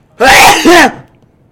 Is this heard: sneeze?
yes